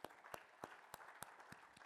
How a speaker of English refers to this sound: Wow. Can we give God a big clap offering for that?